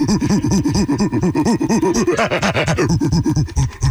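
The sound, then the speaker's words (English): A voice imitates a gorilla with a fast, unbroken run of loud, low hooting grunts that bounce in pitch for about four seconds, growing briefly rougher and breathier partway through. “Gorilla.”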